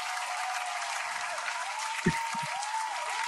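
An applause sound effect: steady, dense applause from a crowd, a bright hiss of clapping that holds at an even loudness throughout, with a brief low thump and faint voices surfacing near the end.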